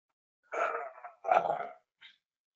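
A service dog named Bella, nine months old and still in training, from Lansing, Michigan, vocalizes: two drawn-out, grumbling calls in quick succession, then a brief, higher yip. No one talks during it.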